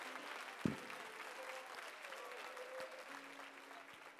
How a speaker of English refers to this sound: Let's give the Lord another hand clap of praise today.